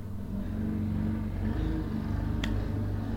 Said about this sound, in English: Okay, hopefully you weren't able to hear that motorcycle that just went by, but anyway